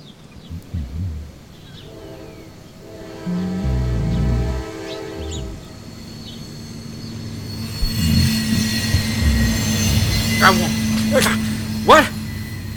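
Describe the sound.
A train rumbles past on nearby tracks, its horn sounding steady tones, then wheels clatter and squeal as the cars roll by loudly. Muffled voices come through briefly.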